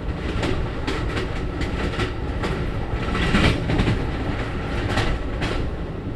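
An Amtrak passenger train clatters steadily along the rails in the oil patch. Its wheels beat a repeated clickety-clack over a continuous low rumble, with no voices.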